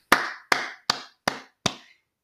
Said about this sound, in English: So just jumping right off into it. Can we just give a round of applause to Tom Hiddleston as Loki?